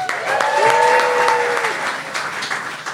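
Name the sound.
audience round of applause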